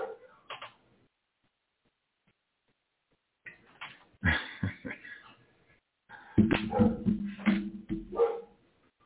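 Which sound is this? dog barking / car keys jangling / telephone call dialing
dog barking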